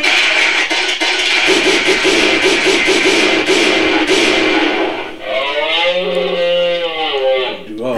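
A drawn-out cow moo rises and bends in pitch near the end, following several seconds of loud, crowded noise with a pulsing, low groan underneath.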